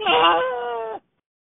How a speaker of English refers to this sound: Your voicemail like is like how, is that your cat? Jesus Christ! It My sounds like a cat, like a kid.